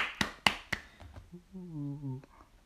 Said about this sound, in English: Give a round of applause for today's podcast.